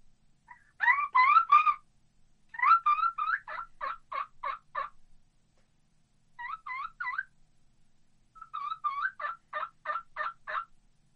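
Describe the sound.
A turkey call demonstrating the kee-kee yelp sounds rising, whistly kee-kee notes that break into sharp, rhythmic yelps, mixing the high whistle and breaking it off into a yelp, repeated in four bursts with short pauses, fairly loud with no talking.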